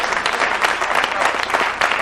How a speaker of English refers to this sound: Oh, the hand claps.